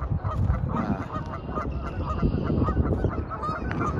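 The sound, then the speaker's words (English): A large flock of geese flying and honking continuously and loudly, many overlapping calls forming a dense, busy chorus with no talking. “Look at all those geese. My God. Look at all those geese.”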